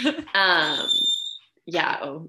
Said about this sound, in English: Can you hear the door? Okay, I'm not worried about it. I live in an apartment, guys.